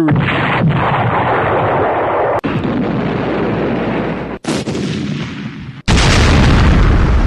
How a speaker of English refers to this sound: Some explosions. Give us a couple more.